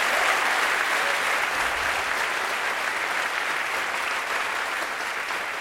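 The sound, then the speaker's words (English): Sustained audience applause, a dense steady wash of many hands clapping at even loudness for several seconds, slightly tapering at the end, with no voices over it. “Thanks for that wonderful applause.”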